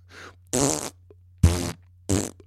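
A faint breathy puff, then three loud, buzzy fart noises in quick succession, each about a third of a second, resonant over a steady low hum, with no talking.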